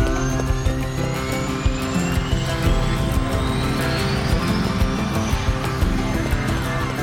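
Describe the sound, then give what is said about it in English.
A helicopter's rotor thrums steadily and loudly throughout, layered with dense music and a rising whine, forming a busy, continuous wall of sound with no speech. “You got your helicopter, you got your music.”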